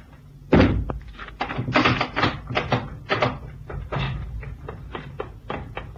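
A heavy wooden trap door in a cabin thuds open with a deep thump, followed by a run of scraping knocks and creaky clatters as it settles.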